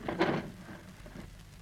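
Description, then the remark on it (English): A soft, steady crackle of a fireplace fire, with a brief louder burst of popping at the start before settling into a low hiss and faint snaps. “Rochester, move my chair a little closer to the fireplace, please.”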